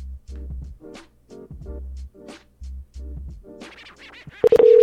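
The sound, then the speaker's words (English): An outgoing phone call's ringing tone: a series of buzzy, evenly spaced pulses over a line, ending in a loud, steady electronic tone. “Yeah, okay, we're ringing.”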